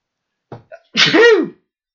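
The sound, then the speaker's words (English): A single loud sneeze: two quick catching breaths, then a forceful burst that trails off with a voiced, descending 'choo' tail. No one speaks. “So I'm going to sneeze.”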